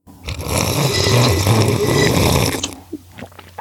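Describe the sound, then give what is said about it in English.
A loud, drawn-out slurp from a big, bold glass at the beginning of a show, a harsh airy sucking noise lasting over two seconds with a low rumbling undertone, followed by a few faint, brief smacking sounds. “We usually do a quick, annoyingly loud slurp at the beginning of the show.”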